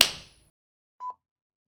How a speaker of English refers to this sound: Thank you for the slap. That was beautiful.